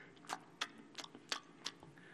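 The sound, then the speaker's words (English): A voice imitates loud, wet smacking, as of a girl chewing her food with an open mouth at the dinner table. About five sharp smacks come at a steady pace, prominent, with no talking. “because she was chewing her food really loud, smacking away.”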